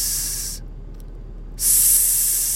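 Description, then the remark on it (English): A voice imitates a snake with two drawn-out, breathy hisses, like the sound of the letter S, fairly loud, split by a brief pause about a second long, with no other talking. “S. That's the sound a snake makes.”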